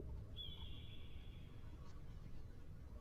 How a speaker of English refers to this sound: Ah, the bird is back.